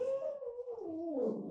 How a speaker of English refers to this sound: I thought that was my dog. At first, when I heard the crying, I was like, oh no, here we go.